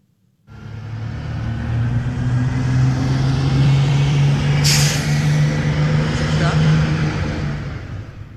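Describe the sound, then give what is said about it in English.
A voice mimics a bus, holding a low, steady engine rumble for several seconds, broken midway by a short sharp hiss like an air brake. “That is you being thrown under a bus.”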